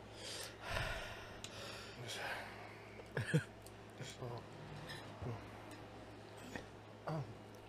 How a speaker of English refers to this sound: Oh, no, it gave me hiccups. So why is it so hot? Why is it so spicy?